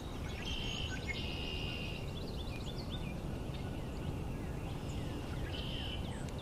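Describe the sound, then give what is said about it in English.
Birdsong of high, thin whistled trills that come in a few separate bursts, heard over a steady, loud wash of low rumbling background noise. No one speaks. “Birdsong isn't as dense as the spot I tried to start at, but it's pretty good right here.”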